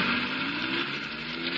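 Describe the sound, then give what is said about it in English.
A steady, rushing roar of truck engines as the trucks drive off to every part of the city, holding an even loudness throughout with no distinct breaks, horns or voices. “There go the trucks again to every part of the city.”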